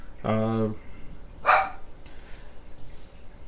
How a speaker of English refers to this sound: Well, that was one of my yippee dogs.